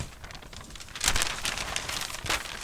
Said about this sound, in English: She slid it from the envelope, unfolded the paper, then unfolded it again and again. She kept unfolding until it filled the entire room.